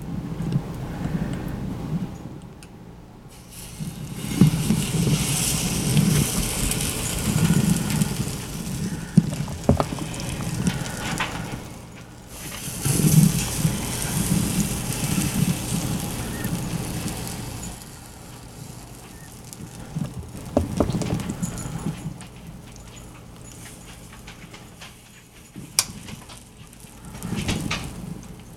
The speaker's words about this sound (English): Okay, we are ready. So, okay, we're gonna open the pancake maker. And you will hear batter being poured into the wells.